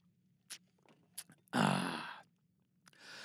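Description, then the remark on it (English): A few small wet clicks of sipping and swallowing water, followed by a long, loud, deep breathy exhale, then a softer breath at the end. “We're going to take a sip of this fine high-quality H2O.”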